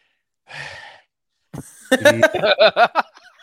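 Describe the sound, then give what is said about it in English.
Someone imitates the heavy breathing of a man talking about endorsing JD Vance: a single breathy exhale, a short pause, then a run of loud, strained, voiced huffs and gasps in quick succession. “He's got that heavy breathing thing now where he goes, he's got the long COVID.”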